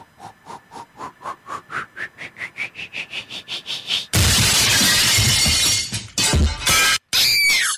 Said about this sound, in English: Not only is her precious vase shattered, but the Elvis is totally destroyed.